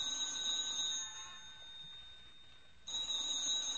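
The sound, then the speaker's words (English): A telephone rings twice with a bright, high-pitched electric bell trill, the second ring starting after a pause of about two seconds. No one speaks. “Oh, look, what difference is a phone call now?”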